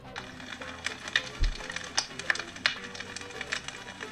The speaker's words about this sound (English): We're making a fire. Yeah, we're making a fire here. Any other descriptions? Snap, crackle, but it's like one of those ones where you just have to put the match to it. It's already like one of those, like, you wrap it like up. A fire starter?